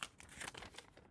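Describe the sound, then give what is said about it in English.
A quiet crinkling of a 25,000-dinar Iraqi banknote from the Central Bank of Iraq being crumpled in the hand, a continuous crackly rustle lasting about a second with no voices. “25,000 dinars. Central Bank of Iraq.”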